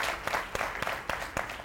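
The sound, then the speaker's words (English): A small group claps steadily for someone's birthday, with a few sharper individual claps standing out in an irregular rhythm over a soft, continuous wash of applause. “Can we clap for him, y'all?”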